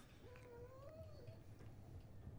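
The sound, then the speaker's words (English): A dog lets out a single drawn-out whine that slides up and then dips, fairly quiet, over a steady low rumble of background noise. “Here's Harlan's dog.”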